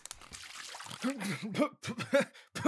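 A quick splash of water thrown on the face of someone napping in a car's back seat to wake them, followed by spluttering and coughing, with a few gasping, voiced breaths in short bursts.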